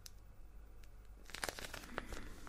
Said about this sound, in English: Good guess. It's a water sleep mask. One with little beads.